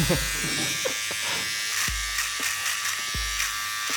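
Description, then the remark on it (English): Electric hair clippers buzz steadily with a bright, constant hum, interrupted by a few low thumps and brief shifts in tone as the blades cut hair shorter and shorter. “It's getting shorter and shorter.”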